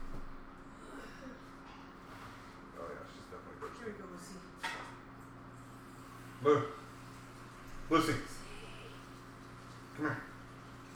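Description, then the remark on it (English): A thirsty female dog pants and huffs in a few breathy bursts spaced a second or two apart, over a quiet hum, with a person briefly speaking. “I'm going to give her some water, just in case. Yeah, she sounds really thirsty.”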